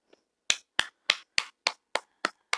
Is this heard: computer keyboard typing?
no